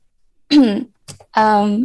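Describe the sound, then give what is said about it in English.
A small choking cough: a short, rough burst of breath caught between two strained, voiced throat sounds, all over within about two seconds and fairly loud. “I like the little choking cough there.”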